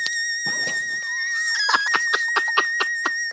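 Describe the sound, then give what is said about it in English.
A xylophone played high rings with a steady, shrill, scream-like tone, sliding briefly in pitch before a quick, even run of struck notes taps beneath it. No one speaks. “If you turn up high enough, it sounds like a woman screaming.”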